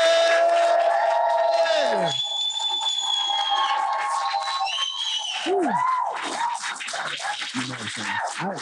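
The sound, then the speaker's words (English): A large audience gives Mr. Myron Golden a standing ovation after an interview, cheering and whooping loudly with rising whistles over a dense wash of applause, the noise sustained throughout without a break. “I never got a standing ovation for an interview, so thank you guys.”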